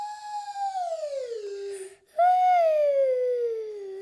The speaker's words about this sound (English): This game is called Singing Slide, and all you need to do is make a slidey sound with your slidey voice, like I'm going to make with my slidey whistle. Show 'em how it's done.